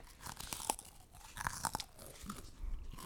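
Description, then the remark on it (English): Crisp crunching of someone biting and chewing a brittle, wafer-like bitter rice cake that tastes like an ice cream cone, with sharp cracks scattered irregularly over a few seconds and no talking. “Getting that ASMR crunching, Eddie?”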